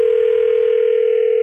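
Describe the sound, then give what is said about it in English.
A steady, unbroken telephone dial tone of an outgoing call placed from radio station B98.5 hums loudly and continuously for the whole moment, with no voices or other sounds over it. “We're going to get Macy on the phone for you.”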